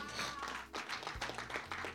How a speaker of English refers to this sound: Clap for the Lord Jesus.